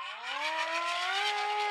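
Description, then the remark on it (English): A police siren wails as about six police cars pull up out front, its loud steady tone sweeping upward in pitch and then holding, with no voices over it. “It looks like about 6 police cars out front.”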